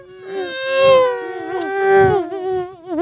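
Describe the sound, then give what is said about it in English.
A voice buzzes a high, wavering hum imitating a small racing car engine, continuous for about three seconds and rising and falling in pitch like something zipping past. “You have to do the best car noise.”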